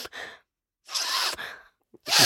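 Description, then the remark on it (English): A person imitates their dog sniffing with her nose right under a door, making breathy, hissing snuffles: a short puff, a longer rough sniffing burst, a tiny catch, then another loud snort of air. “She's doing her sassy sniffing.”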